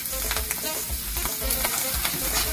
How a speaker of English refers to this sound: Add a little bit of oil. It's gonna pop and splash because oil and water don't mix, don't get excited.